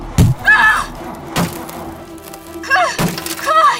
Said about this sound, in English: Wyatt slams himself against the hood of the Chevy.